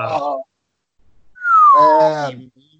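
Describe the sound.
A person whistles a single falling note imitating the game-show 'bankrupt' sound, sliding downward, mixed with a groaning vocal tone. A brief voiced sound comes just before it.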